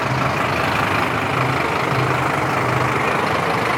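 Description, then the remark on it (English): A fire engine's heavy motor rumbles steadily and loudly as it passes by, a constant low, throaty drone with no siren and no voices. “See, it's such a hot debate, they have to send the fire engine.”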